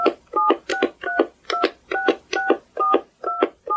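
Touch-tone keypad beeps dial a 10-digit phone number at an automated phone prompt: a quick, steady run of about ten crisp dual-tone presses, clear, with no talking.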